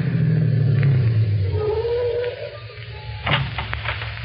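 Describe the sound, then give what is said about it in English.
A car engine rumbles low and steady, its drone dropping in pitch as the vehicle slows, with a brief burst of rattling noise near the end. “Stop the car.”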